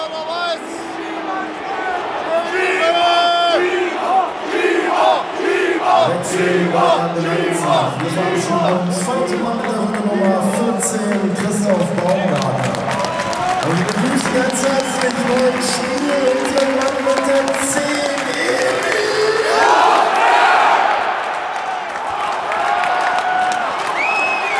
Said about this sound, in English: And finally, in the middle of the crowd being very animated because of a decision by the referee, Emil Forsberg enters the pitch.